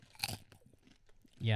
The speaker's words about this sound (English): Yeah. It's crunchy. It's healthy. And it tastes like popcorn. Three ingredients.